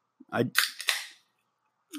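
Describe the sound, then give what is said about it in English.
A can of lemon-lime seltzer water cracks open: a low scrape, then a sharp metallic pop and a short burst of fizzing hiss that fades within about a second. “I'm gonna open a can of water.”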